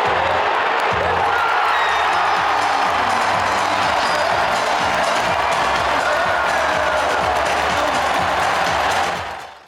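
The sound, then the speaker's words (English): A huge crowd at the Golden 1 Center arena in Sacramento roars and cheers continuously at high volume during the third quarter of a Sacramento Kings game against the Phoenix Suns, a dense wall of voices with scattered whoops and clapping, sustained throughout before dropping off at the very end. “Black screen, no context, no visuals, just listen to the volume of the Golden 1 Center.”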